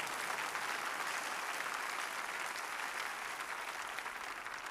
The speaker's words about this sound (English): shall put our hands together and clap for the Lord.